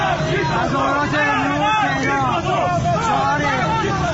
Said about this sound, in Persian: در همین راستا در چهارراه استانبول شعار مرگ بر دیکتاتور ادامه داشت و موتور سیکلت نیرو انتظامی هم به آتش کشیده شد.